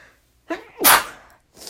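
A single loud sneeze from allergies: a short sharp intake of breath followed by an explosive burst, then a brief trailing breath, with no talking.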